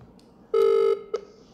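A phone dialing out to place a call on speaker: one steady, buzzy electronic tone holds for under half a second, then a short, sharp blip follows. No one speaks.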